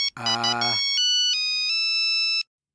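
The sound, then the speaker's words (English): A phone rings on the Radio Nonsense show with a loud electronic ringtone: a buzzy opening burst, then a few clear sustained beeping tones stepping in pitch before cutting off. No one speaks. “Okay, Radio Nonsense listeners, I'm just, the phone is ringing.”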